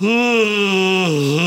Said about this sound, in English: Number five, yawn in their face. When someone says you can't do something, say, oh, I'm going to yawn in your face, and then go like this.